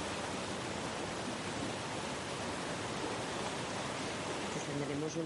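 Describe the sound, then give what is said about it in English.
A steady roar of falling water at the Chorrera de Calabazas waterfall, where the water drops several meters into a small pool, splashing loud and unbroken throughout, with a faint voice briefly emerging near the end. “We are in the chorrera de Calabazas, right where the water jumps several meters into the void to fall into a small pool.”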